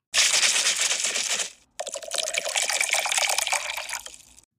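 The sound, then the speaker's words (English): Bel Air rosé wine is poured into a glass: a brief splashy gush, a short pause, then a steadier stream whose gurgle rises in pitch as the glass fills. No one speaks. “So of course, my cocktail of the day is a glass of Bel Air Rose to toast to two very, very special occasions.”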